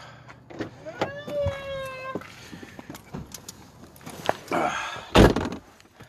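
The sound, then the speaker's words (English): A car door that was ajar shuts with a single solid thunk near the end, preceded by a short rising electronic tone, quiet shuffling and a brief murmur of voices. “Your door is ajar. Can you just close it?”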